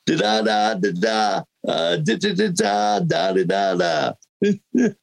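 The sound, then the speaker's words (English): A single voice imitates Morse code, with long sustained tones and short clipped bursts. A brief pause falls early on, and a few quick blips close the sequence. “That's … and Morse code.”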